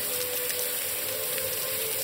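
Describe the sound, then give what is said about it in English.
Steady spray of hot shower water before bed, hissing and pattering continuously like rain on a hard surface, with a faint tonal hum underneath and no voices. “hop in the shower before bed. The water burns at first, but in a way that feels like an itch being scratched, pain which quickly turns to euphoric relief.”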